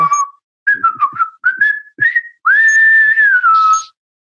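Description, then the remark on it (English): Someone whistles a short, lively tune: several quick choppy phrases, then one long sustained note that slowly drifts downward before cutting off. No talking. “So are you going to whistle, or should we move on?”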